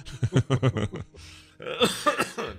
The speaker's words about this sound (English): also, that cough's not a sick cough.